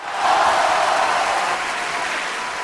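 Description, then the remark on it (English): A burst of crowd applause, dense and steady, with many hands clapping at once at a fairly loud level before easing off slightly toward the end. No talking. “Clap it up for her.”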